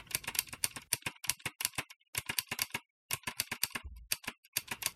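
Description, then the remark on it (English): Rapid, bright key clicks from a mechanical keyboard being typed on, in uneven bursts separated by brief pauses, with no voices. “I need to find one with quieter key switches.”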